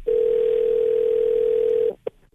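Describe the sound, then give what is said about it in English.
A steady, loud telephone dial tone of an outgoing call placed by radio station New Country 103.1 drones for nearly two seconds, then cuts off, followed by a brief click. No one speaks. “We're gonna get her mom Diane on the phone here.”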